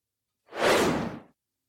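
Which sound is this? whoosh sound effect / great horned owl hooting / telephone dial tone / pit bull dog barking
whoosh sound effect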